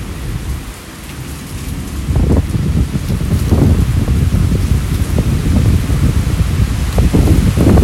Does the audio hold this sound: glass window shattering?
no